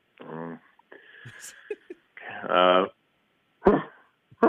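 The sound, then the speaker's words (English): A person imitates a dog's bark: a couple of loud, harsh voiced barks a second or two apart, followed by short breathy bursts. “Give me a bark that's as loud as these dogs, just so I can get an idea.”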